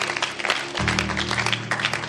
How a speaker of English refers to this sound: Oh, clap your hands.